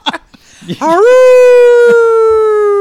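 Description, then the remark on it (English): After a few brief noises, a single long wolf-like howl swells up and holds steady for about two seconds, sliding slowly downward; it sounds like a human voice imitating the howl, loud. “The wolves, children of the night, they can smell my blood turd.”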